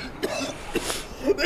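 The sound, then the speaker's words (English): Several short, raspy coughs come in quick, uneven bursts at moderate volume, with a faint voice-like murmur in the background. “You hear those coughs?”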